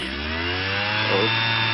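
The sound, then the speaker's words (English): A leaf blower sound effect drones steadily, a loud, continuous engine whine with a breathy rush of air and no pauses throughout. “Uh-oh, I started the leaf blower sound effect.”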